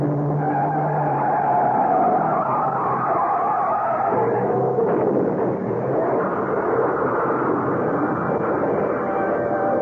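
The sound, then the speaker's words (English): A trailer truck roars as it zooms up on the right in fairly heavy traffic, while car tires screech and skid loudly across pavement. The squeal wavers and holds for several seconds over a rumbling engine, with no voices. “I saw the look on the face of the driver of a trailer truck he cut off and opened my mouth to warn him, but I was just a second too late as the truck came zooming up on our right.”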